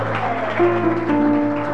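An audience claps steadily for a singer, a dense wash of many hands with no clear individual beats. A few sustained tonal notes ring underneath, and the applause holds at an even, moderate level throughout.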